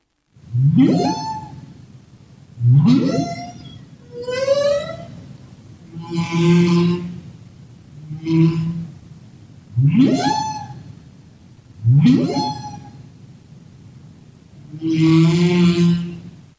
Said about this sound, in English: So this is an example of a humpback whale song. So they have a kind of a song which consists of different units, and they are repeated kind of throughout their vocalization. So they can last about 20 minutes